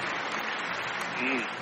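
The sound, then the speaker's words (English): A canned applause effect: dense, steady clapping that fills the short clip at an even level, with a brief voice surfacing near the end. “That's the applause sound that I have.”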